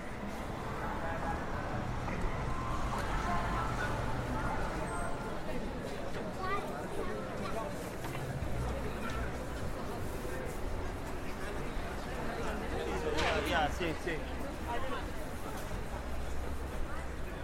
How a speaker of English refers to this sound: So we've made it through the crowds to Piccadilly Circus, but there are many people here.